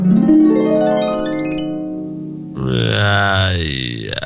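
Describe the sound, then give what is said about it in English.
A loud electronic sound effect, triggered by clicking a button: a buzzy, warbling tone that rises then fades, followed by a harsher gurgling, croak-like burst, with no voices. “I clicked a button, and the next thing you know, did you just roll over and like croak?”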